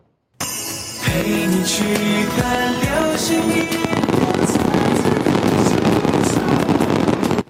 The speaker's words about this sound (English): waterfalls of golden jade cascaded across the sky. The effect was made possible by drones that launch rockets on their side in midair.